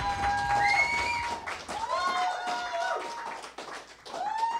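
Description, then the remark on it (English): An audience claps and cheers, a dense wash of applause with whistles and shouts rising over it, steady and lively throughout. “I hate hearing applause.”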